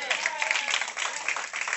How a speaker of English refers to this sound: Hallelujah. Two claps on that.